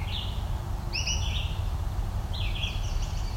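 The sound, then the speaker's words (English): An American goldfinch sings and calls in a few short bursts of bright, twittering notes over a steady low rumble of outdoor background noise. “It's also American goldfinch singing, calling.”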